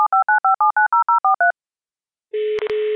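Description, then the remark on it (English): Ten quick touch-tone dialing beeps in a steady rhythm as a call is placed to a guest in Phoenix, a short silence, then a loud, steady telephone dial tone hums on, broken by two brief clicks. No one speaks. “So let's dial her in.”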